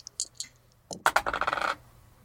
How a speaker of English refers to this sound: So everyone go ahead and roll 2 dice and add up your initiative.